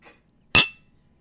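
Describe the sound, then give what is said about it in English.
Two new beer glasses holding a peach blonde ale clink together once in a toast, a bright ringing tap that fades quickly into near silence. “Let's pour it into our new glasses. All right, Mama. Cheers. Cheers.”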